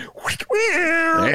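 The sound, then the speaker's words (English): A voice imitates a cat with a single drawn-out, wavering meow, loud and close, after a couple of brief breathy sounds. “Let's hear Cat out of the bag.”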